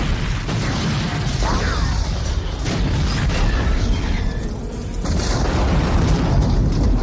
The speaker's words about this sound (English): So they're being chased by the truck, and they kind of separate. Kyle tells Sarah to keep running. He pulls out his last bomb, stuffs it in the tailpipe, and he jumps into a dumpster, and we get a great explosion.